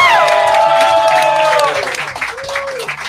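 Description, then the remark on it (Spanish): A crowd breaks into loud applause mixed with whoops and cheers, holding steady for over a second and a half before thinning out, with some chatter and a rising whistle-like tone near the end. “¡Aplausos, gente!”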